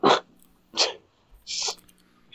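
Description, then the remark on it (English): Three short, breathy sniffles in a row, each a quick burst of nasal air with brief pauses between, the last one hissier than the first two. No talking. “I heard that sniffle.”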